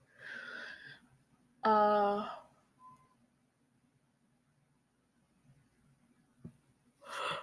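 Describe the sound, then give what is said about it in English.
A person lets out one loud, drawn-out yawn with a voiced, groaning tone, preceded by a breathy inhale and followed by quiet breathing and a faint exhale at the end. “Yawning.”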